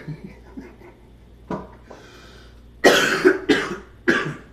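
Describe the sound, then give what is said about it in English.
A person coughs hard several times in quick succession, three loud, harsh bursts, preceded by a softer cough and some quiet throat sounds. “Sorry about my cough.”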